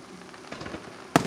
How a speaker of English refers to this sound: As it's a beautiful night for the fireworks in downtown Vincennes.